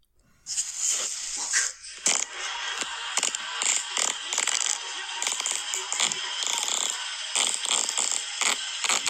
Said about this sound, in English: You go, brr, brr, brr, brr, brr. It's not a good way to finish. Good fart, though. Great length.